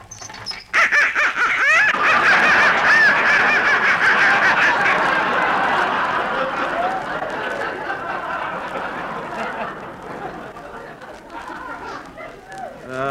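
A flock of live ducks in a basement quacks loudly and continuously, many overlapping nasal calls forming a dense, chattering din that starts abruptly and gradually thins out.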